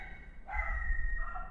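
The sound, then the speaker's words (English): A dog barks at someone outside, its voice coming as a drawn-out, tonal cry that rises and holds for about a second over a low background rumble, with no talking. “My dog saw someone outside, I think.”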